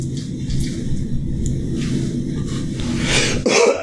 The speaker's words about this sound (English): Coughing on the mic.